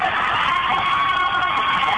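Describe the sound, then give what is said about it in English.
A large basketball crowd roars and cheers after Hayes Chancellor's breakaway slam dunk, with Providence leading by seven, in a dense, sustained wash of voices, with scattered whoops and shouts rising over the steady noise. “I got the crowd going there.”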